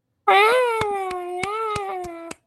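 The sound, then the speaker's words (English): A lone voice imitates crowd cheering with one sustained, wavering wail lasting about two seconds, steady in pitch and fairly loud, with a few sharp clicks scattered through it. “What did the cheering sound like?”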